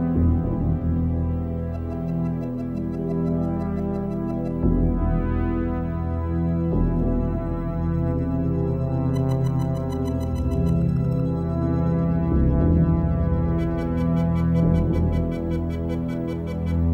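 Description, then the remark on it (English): A loud, sustained synthesizer drone with layered low tones for a film title sequence, overlaid by sequencer-programmed pulsing notes at different tempos and tones, synchronized to on and off pulses of the graphics, with rapid high-pitched ticking patterns in steady rhythmic bursts, no voices. “So we did the droney part, and then later on I very precisely programmed the sequencer at different tempos with different tones to synchronize with the on and off pulses of the graphics.”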